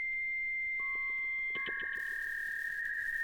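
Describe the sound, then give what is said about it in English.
A dial-up modem connecting over a phone line: a steady tone with a rapid series of dialing beeps, then a harsh hiss and warbling high screech as the handshake begins. No voices. “Gotta boot up that modem, you know?”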